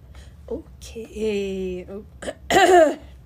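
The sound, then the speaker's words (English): Someone clears their throat a few times in a row, with raspy, voiced rumbles and short scratchy bursts, the last one loudest, and no spoken words. “Clear my throat a little bit.”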